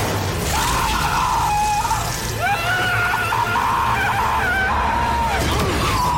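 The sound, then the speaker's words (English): A man, the film character Hector, screams in long, strained, wavering cries that rise and fall in pitch, loud, over a dense rumbling film soundtrack with no clear words. “Here's some more Hector screaming.”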